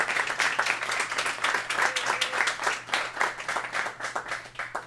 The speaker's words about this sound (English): And we would love to take this time to thank the live audience as well. Go ahead and clap for yourselves.